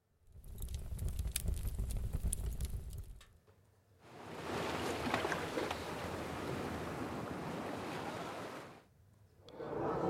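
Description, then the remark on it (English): Water rushes and sloshes against a moving sailing boat, with steady wind noise and a low rumbling surge, in two or three sustained stretches separated by brief lulls; no one speaks. “we've got a fireplace, a beachside, pubside, sailing. I reckon that's sailing.”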